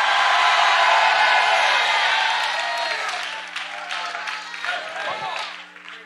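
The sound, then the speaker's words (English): An audience shouts and applauds together in a loud, dense wash of clapping and cheering voices that gradually thins and fades over several seconds. “You say, why are these people shouting? Because they're paying the price.”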